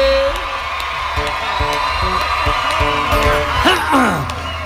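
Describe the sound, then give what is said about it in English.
A loud crowd at a live country concert in a theater cheers and roars steadily for several seconds after a song ends, with scattered high whoops and shouts rising above the dense wall of voices and a swell of yelling near the end. “Crowd goes crazy.”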